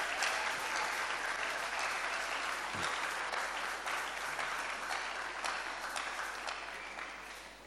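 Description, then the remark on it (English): A church audience claps together in a dense, sustained burst of applause, steady and fairly loud, tapering slightly toward the end with no voices heard. “If you want to clap, clap, clap unto Jesus. Clap unto Jesus.”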